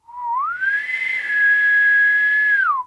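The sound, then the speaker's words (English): A person whistles alone, clear and fairly loud: the pitch slides upward, holds one steady note for about two seconds, then glides back down and stops. “Yeah, my whistle ain't working. That doesn't have that lonesome, distant sound.”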